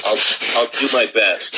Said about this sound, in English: I'm sorry, I'm just blowing my nose and my hand here. I can't afford tissues.